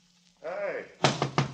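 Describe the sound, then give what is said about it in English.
A brief voice-like call, then three loud knocks on a locked door in quick succession, each a sharp thud with a short ring. “I'm locking the door.”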